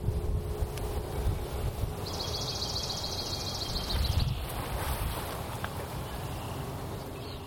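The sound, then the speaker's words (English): Steady wind blowing with a low, gusty rumble that swells briefly, while a short, high-pitched bird trill rises above it for a couple of seconds. No one speaks. “Wind.”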